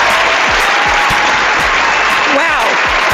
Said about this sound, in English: They couldn't wait to applaud. It's an amazing amount of applause. They're for just so excited one person. For this show. They just couldn't stop their applause.